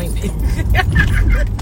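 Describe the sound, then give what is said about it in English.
Steady low rumble of a car interior while driving, a constant engine and road drone filling the background, with faint voice-like sounds and small clinks drifting over it. “This is car ride specials.”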